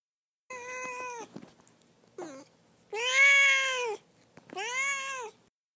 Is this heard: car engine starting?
no